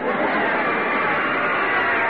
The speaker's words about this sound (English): Oh, they're getting a big cheer, folks.